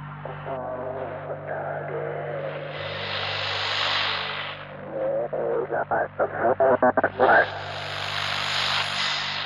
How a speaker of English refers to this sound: His speaker crackled with a strange noise. I froze. It was whale-like, but different. A long, resonating noise.